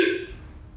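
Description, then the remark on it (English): A single abrupt hiccup: a short, voiced gulp that starts sharply and fades within a quarter second, leaving quiet background with no talking. “I mean, the hiccups are hiccuping. It's a hiccup”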